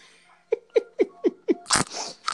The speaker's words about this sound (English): Let me clear my throat. Let me clear my throat.